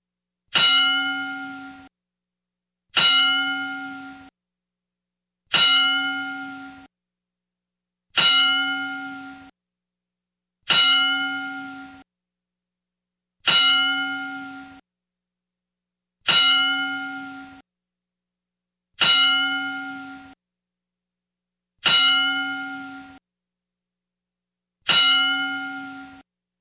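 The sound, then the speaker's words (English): A bell is struck ten times as a ten-bell salute in tribute to wrestlers Terry Funk and Bray Wyatt, at a steady, unhurried pace, each clear metallic clang ringing out and fading before the next. There is no talking. “We're going to pay tribute to you with a 10-bell salute.”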